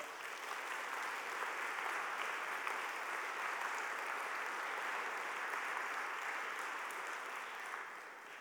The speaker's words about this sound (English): Thank you. Give this man a clap.